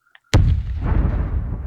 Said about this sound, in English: There are cannons flying into your ship. Splinters start striking you everywhere.